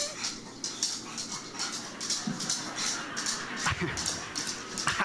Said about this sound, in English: And this last one, I think this dog is chasing its tail.